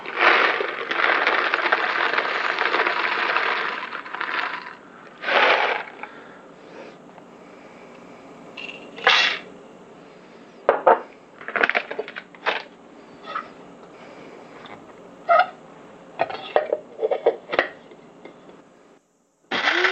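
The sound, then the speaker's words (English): A loud, steady grinding burst runs for about five seconds as coffee beans are ground, not to a very fine grind, followed by scattered rattles, scrapes and sharp clicks with pauses between them. No one speaks. “It's not going to be a really fine grind.”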